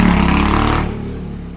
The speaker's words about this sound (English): So, yeah, we'll let the motorcycle go by.